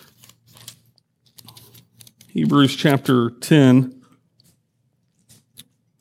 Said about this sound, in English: I love hearing all the paper turning. This is good.